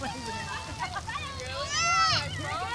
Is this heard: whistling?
no